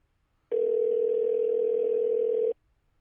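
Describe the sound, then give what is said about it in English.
A single steady electronic ringback tone from an unanswered outgoing phone call, a loud, even two-second buzz that starts and stops abruptly, with silence before and after and no talking. “So far, four rings and nothing.”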